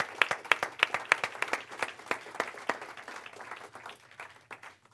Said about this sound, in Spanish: Podemos darles un aplauso a todos los que han estado yendo. All the ones that have been going, a round of applause.